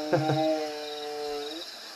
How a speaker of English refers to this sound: Try my whale songs. Guys, don't worry, it's just my whale songs. Just my whale songs. Helps me sleep.